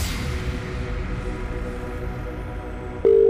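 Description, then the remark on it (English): A telephone call being placed to a randomly selected number for a cash prize, with five rings allowed to answer: a few seconds of line hiss and faint tones, then a loud, steady ringing tone starts right at the end. No one speaks. “That's our first ring down. You've got 5 rings to answer.”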